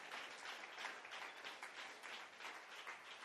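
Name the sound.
audience clapping in praise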